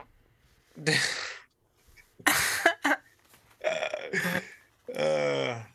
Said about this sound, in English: Every episode, we all just rip a fart.